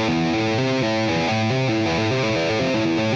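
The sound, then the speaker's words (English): Distorted electric guitar plays a quick run of legato hammer-on notes on the low E string, from the open string back up to the 5th and 8th frets, played with the left hand alone, the pitches stepping upward in a steady, even rhythm with sustained, buzzing overdrive and no voices. “And then hammer on back up.”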